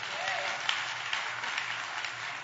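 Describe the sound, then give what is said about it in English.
An audience claps their hands together in response to a sermon, a dense, steady patter of many overlapping claps that holds an even loudness throughout, with a faint murmur of voices underneath. “Come on, clap your hands if you understand what I'm saying.”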